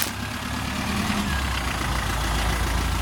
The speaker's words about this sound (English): stepped up to the warm late October sun to meet the truck and trailer, still maneuvering to park in the gravel yard.